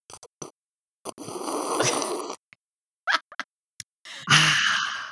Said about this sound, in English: just for any listeners at home who don't like the sound of a sip